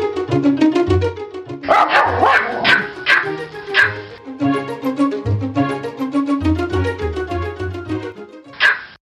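A dog barks and yips in a steady run of short, fairly loud calls, breaking into high whimpering whines between the barks across the whole stretch.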